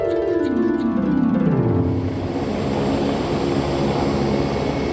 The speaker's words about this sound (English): The Little Wicker Basket's helicopter is flying away just fine.